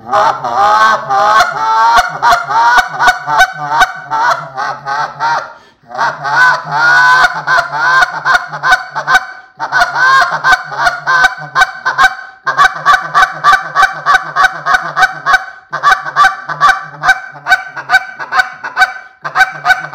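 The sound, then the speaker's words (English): A goose call blown in a steady run of short, clipped honks and clucks, loud and close, with brief pauses between bursts and the rhythm easing slightly toward the end, used to finish geese locking up and floating into a field. “This is a great call to finish them.”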